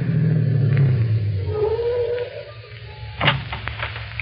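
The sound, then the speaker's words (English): A car engine rumbles steadily and winds down in pitch as the vehicle slows to a stop, then settles into a low idle, with a brief sharp clunk near the end. “Stop the car.”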